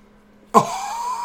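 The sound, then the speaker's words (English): After a short quiet stretch, a man yawns with a sudden breathy onset that settles into a long, steady, slightly falling vocal tone that carries on to the end. “It's because he yawned.”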